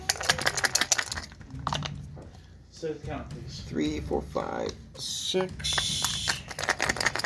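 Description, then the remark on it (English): Dice clatter across a hard tabletop in bursts of quick clicks and rattles as damage is rolled in a game, with people talking over and between the rolls. “Dice, don't you dare make this look bad.”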